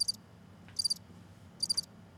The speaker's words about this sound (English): I can't hear you over the cricket. Oh, man. I hate crickets, man. They're so annoying. I definitely hear it, too. Cricket, you hear it? I hear it. Yeah, dude. I don't know where the little bastard's at.